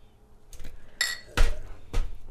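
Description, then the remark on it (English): Beer glasses clink together in a toast: four bright, ringing knocks spaced irregularly over about two seconds, moderately loud, with no talking over them. “We should toast.”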